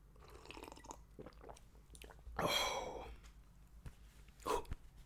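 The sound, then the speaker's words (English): Mouth noises of someone sipping water: a short slurping gulp in the middle, a quieter swallow near the end, and soft smacking between, with no talking. “Quick sip of water, boss.”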